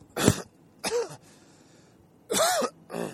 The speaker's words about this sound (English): just got a cough